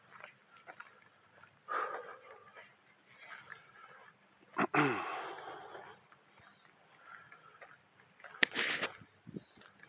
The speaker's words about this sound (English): So I'm walking uphill right now, in case you're wondering why I'm breathing a little heavier. I can put my mic up a little bit like that. So maybe not breathing directly into the mic.